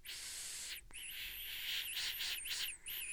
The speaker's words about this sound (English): Okay, that is a whistle. That's a whistle. That's definitely a whistle. That's 100% a whistle.